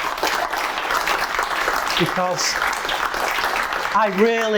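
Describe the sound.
Audience applause, a dense, steady clatter of many hands clapping for several seconds, with brief voices mixed in; a speaker begins talking as it continues at the end.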